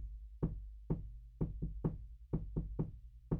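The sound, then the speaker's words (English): Nine sharp taps of one finger against the side of a door, done as finger stretching, in an uneven, stop-start rhythm, some coming in quick pairs, each a crisp wooden knock over a low steady hum. “Stretching by tapping on the door?”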